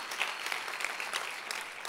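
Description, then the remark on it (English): An audience claps together in a steady, dense wash of applause, many hands overlapping with no clear rhythm, sustained at an even moderate loudness for the whole moment. “Just clap and thank God.”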